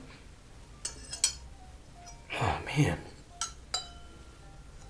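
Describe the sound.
A few light glass clinks and taps, spaced unevenly, as about half a teaspoon more water is added to a glass of very dark American single malt whisky; a short spoken exclamation cuts in between them.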